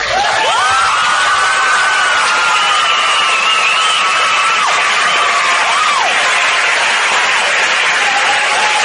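audience applause and cheering

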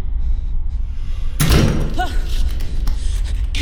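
door slamming shut

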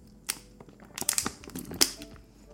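drinking water

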